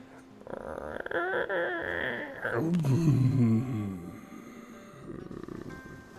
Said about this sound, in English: And then from underneath you, you hear a low, rasping creak.